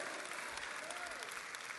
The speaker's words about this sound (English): Can we give him one more hand clap of praise today? Hallelujah.